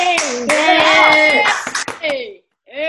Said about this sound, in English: So we all need to just clap for each other because these are trying times. Exactly. Round of applause for those listening.